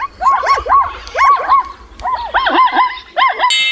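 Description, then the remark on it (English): A zebra calling in a rapid string of high, yelping barks, grouped in short bursts of three or four with brief pauses between, loud and alone with no talking. “If you guess zebra, good job! You're a real animal expert. Zebras use different sounds to communicate with other zebras.”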